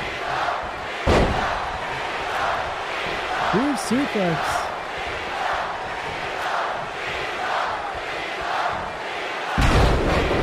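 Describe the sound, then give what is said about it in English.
A packed wrestling arena crowd roars and cheers loudly for John Cena in an opening match against John Morrison, with a brief shout from a commentator over the noise and heavy thuds of impacts, such as a clothesline and a kick, near the start and end. “And the crowd erupts for John Cena.”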